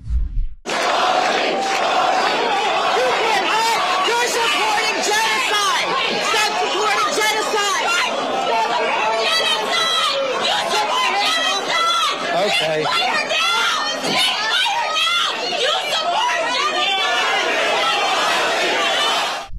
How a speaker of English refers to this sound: In fact, as soon as his election was announced, a bunch of pro-Hamas protesters showed up and started yelling at him. That's what this looked like.